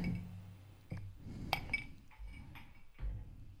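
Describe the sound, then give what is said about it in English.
Ice cubes clink against a glass a few times in quick, light taps over low rumbling handling noise with no talking. “I feel like Pat Dye on the Feinbaum show back in the old days where you could hear the ice clinking.”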